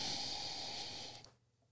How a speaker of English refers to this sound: It's the inhale. Yeah. Because it's all about the nose on this cocktail.